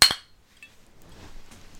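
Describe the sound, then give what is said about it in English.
Two drinking glasses tap together in a toast in a quick, bright double clink, with a brief high ring that fades into quiet. “Cheers.”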